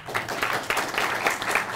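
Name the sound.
round of applause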